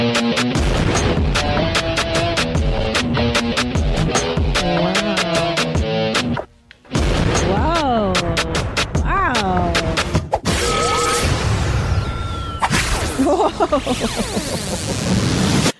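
A loud, continuous barrage of booming explosion effects mixed with sweeping musical tones breaks off for a brief pause, then resumes with more blasts and rising and falling whistles.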